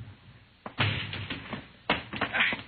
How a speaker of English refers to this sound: Break down the door.